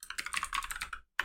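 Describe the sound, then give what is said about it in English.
Rapid computer keyboard typing: a quick run of crisp key clicks, a brief pause, then more keystrokes resuming. No voices. “Okay, so now I've just said server that, and I'm typing two's complement.”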